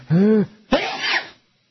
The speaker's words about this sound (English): and I'm going to sneeze. Uh-oh.